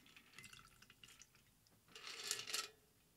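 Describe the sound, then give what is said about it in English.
A whiskey cocktail is poured into a glass, starting with faint, scattered drips and trickles, then a brief, fuller splashing stream near the end. It is quiet, with no talking. “Pop it in there and pour her out.”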